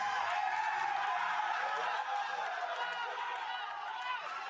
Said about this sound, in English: Look at that. Crowd's into it.